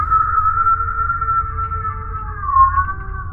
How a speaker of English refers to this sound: And you are awoken by a noise. It sounds like a almost metallic sounding voice, for lack of a better word. But it is very, very muffled, and it almost sounds like a scream.